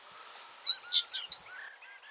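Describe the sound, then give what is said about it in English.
A blackcap, perched low down at the back where there is a nest, sings a short, bright phrase of clear whistled notes, loud, then trails off into a softer, quieter warble. No one speaks. “Suspect it's a black cat.”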